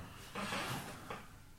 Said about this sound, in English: What's that noise? It's my chair because I'm fat.